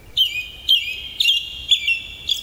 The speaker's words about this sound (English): The sun is setting. You call back to the bird. You perfectly mimic the sound of a robin welcoming the setting sun.